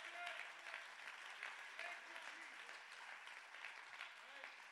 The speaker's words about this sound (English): Somebody clap your hands and give God the praise.